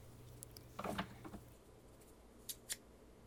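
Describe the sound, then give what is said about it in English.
Scissors cutting fabric: a quiet cluster of soft snips and rustles early on, then two crisp, separate snips a moment later, with no talking. “Scissors.”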